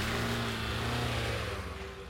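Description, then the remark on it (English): A car engine is started and roars loudly, its steady droning hum holding before easing off slightly as the car peels out and speeds off down the street. No voices. “So Ski got in his car, started the engine, peeled out, and sped off down the street.”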